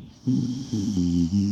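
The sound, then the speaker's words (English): A person makes a throaty, snoring-like snort: a short run of rough, buzzing voiced pulses, loud and nasal, imitating the sound of someone snoring. “God, you sound like Matilda snoring.”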